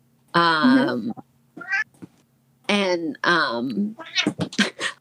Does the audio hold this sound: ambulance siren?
no